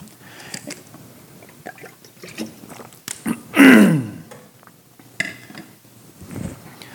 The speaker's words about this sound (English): Excuse me. Let me get some water.